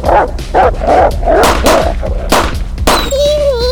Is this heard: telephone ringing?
no